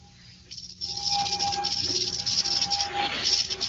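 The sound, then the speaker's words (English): A large snake's dry rattling buzz starts softly, then swells into a steady, sustained hiss-like rattle for a few seconds, loud, with no one speaking. “And now there'll be a large snake, which you'll pick up behind the head.”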